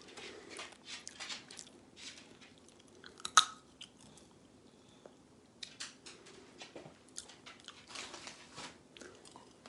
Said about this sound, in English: I'm not the biggest fan of sunflower seeds, eating them out of the shell.